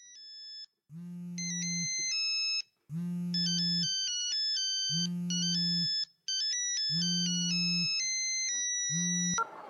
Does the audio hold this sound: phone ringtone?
yes